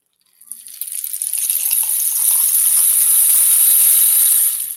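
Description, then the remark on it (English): A homemade prototype rain stick decorated with Japanese art is tipped, releasing a steady, rising cascade of tiny pattering beads that swells into a continuous bright hiss like falling rain, then cuts off abruptly. No one speaks. “This is a prototype. This is my rain stick. Listen, y'all.”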